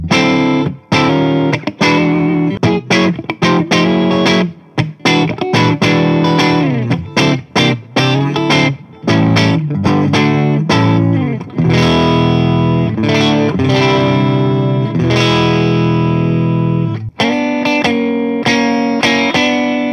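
A distorted electric guitar plays a loud, punchy riff with the neck and bridge pickups combined, mixing choppy staccato chords and sustained ringing notes with a thick, raunchy tone and no voices.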